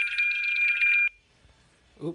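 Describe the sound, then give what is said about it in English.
A loud, steady high-pitched electronic timer alarm rings for about a second and cuts off abruptly, followed by near silence before a voice briefly begins speaking. “Pardon me, podcast listeners, that was my timer. I had to stop it.”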